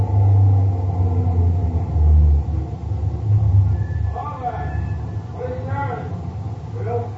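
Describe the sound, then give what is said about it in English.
A heavy truck engine rumbles low and steady, then eases off as the truck slows to a halt at a roadblock, followed by faint, muffled voices asking what is in the truck over a quieter idle. “Think we're coming to the roadblock? Could be. Yeah, he's stopping.”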